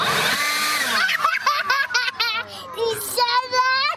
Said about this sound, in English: Wait, what's she doing? She's stuffing her stuffed bunny into a leaf blower. After she gets it in nice and snug, it's time for blast off.